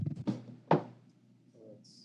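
Dice tumble across a tabletop in three quick knocks, the last one loudest, rolled for a history check in a tabletop role-playing game and landing on 19, before settling into near silence with a faint tonal hum.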